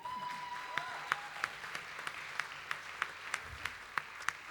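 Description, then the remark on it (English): A round of applause for a newly engaged couple who have come up to the front: a dense wash of clapping hands with a few sharp, louder claps punching through at a steady, even pace, and no voices over it. “That means another round of applause now that they're up here.”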